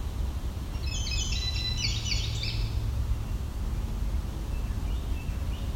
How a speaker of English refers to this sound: This bird's being actually quite quiet for a Carolina wren.